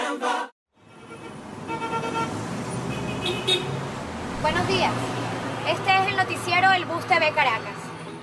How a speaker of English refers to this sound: Right now, you're hearing the streets of Caracas, Venezuela, specifically inside a bus.